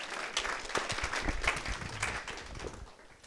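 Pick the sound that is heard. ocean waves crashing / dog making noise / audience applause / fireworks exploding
audience applause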